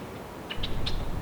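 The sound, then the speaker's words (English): A rusty blackbird about 6 feet away, in flooded ground, gives three short, sharp call notes in quick succession over a steady low outdoor rumble. “that rusty blackbird that was in front of me was, there it is again, only like 6 feet away.”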